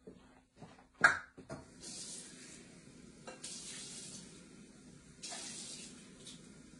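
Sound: water running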